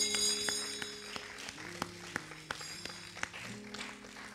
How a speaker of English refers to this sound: Thank you for clapping.